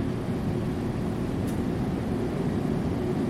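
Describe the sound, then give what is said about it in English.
A steady, low droning rumble of an airplane in flight fills the whole stretch, constant in loudness with no breaks and no voices. “And now the feeling, I know you've got to keep your head still as the plane decelerates or accelerates downwards.”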